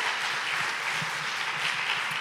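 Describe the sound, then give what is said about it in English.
Steady crowd applause fills the whole stretch, a dense wash of many hands clapping at once, fairly loud and continuous without any voices standing out, clapping in response to a mention of the overturning of Roe versus Wade. “Come on, you can clap for that.”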